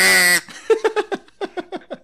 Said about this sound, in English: So duck call. Duck call.